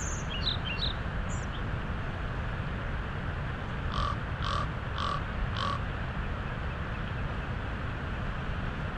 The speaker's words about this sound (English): There's a raven sitting on that lone tree, so much bigger than the crows we saw earlier.